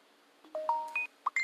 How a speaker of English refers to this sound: phone be popping. I don't know which one to take off. Trying to put mute on. I don't know which group to put it on. It's just so many of them.